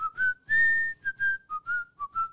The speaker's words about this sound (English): Can't you whistle, though? That's a very standard thing.